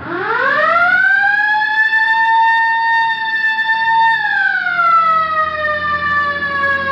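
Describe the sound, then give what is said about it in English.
A police car siren is switched on by officers in their car, winding up quickly into a long, loud, steady wail, then beginning to slide back down in pitch, with no talking over it. “All right, hit the siren.”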